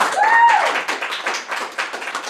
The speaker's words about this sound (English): For those watching, if y'all didn't clap, I'm going to clap. Everybody clap, please.